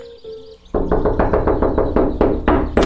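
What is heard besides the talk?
knocking on a door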